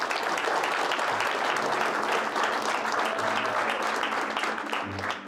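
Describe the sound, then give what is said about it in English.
An audience claps steadily for several seconds to welcome a special guest, a dense, even wash of many hands with no pauses and no voices standing out. “So today, let's clap it up.”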